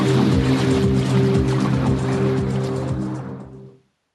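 A droning electronic music passage: steady, sustained low synth tones layered under a dense, hissing noise wash, fairly loud and close, then fading out quickly just before the end.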